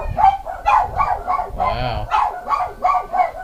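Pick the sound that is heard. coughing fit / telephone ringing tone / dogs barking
dogs barking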